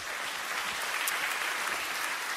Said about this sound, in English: And so can we give Kara a big round of applause?